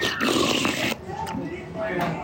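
A noisy slurp from a spoon followed by wet chewing and munching, with muffled mouth sounds mixed in; the slurp is loud and breathy, the chewing softer and irregular.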